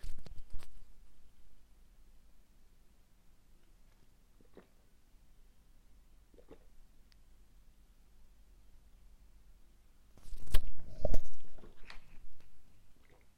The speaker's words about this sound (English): I've got my coffee that I want to drink that I don't want to be slurping down the microphone. I'm actually going to have a wee sig, a wee sip, more like, not a sig.